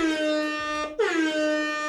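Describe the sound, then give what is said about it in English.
A loud, brassy triple air horn sound effect blares in long sustained blasts, cutting off briefly near the middle before sounding again at full force, with no voices. “That's right, it's a triple air horn kind of Thursday.”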